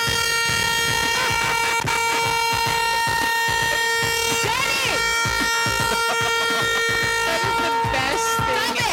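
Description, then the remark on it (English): A dog inside a Hyundai honks the car horn, which blares loudly and steadily, holding a harsh, buzzing tone for the whole stretch, with a few warbling squeaks and jumbled background noise layered over it. “No wonder why the dog's honking.”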